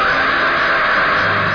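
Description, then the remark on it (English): A man's harsh, sustained scream in a horror film trailer, loud, holding steady at full strength for a second and a half with no pause or other voices. “Blackula, more horrifying than Dracula, screaming for revenge against a voodoo cult of evil.”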